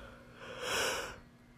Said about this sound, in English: Oh my god, I'm yawning.